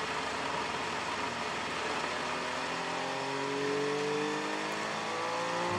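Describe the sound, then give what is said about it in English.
Race cars roar past during a race as the other cars come into the pit lane, their engine notes climbing steadily in pitch as they accelerate, a loud, continuous snarl of several motors overlapping with no voices. “with all of the other cars coming into the pit lane.”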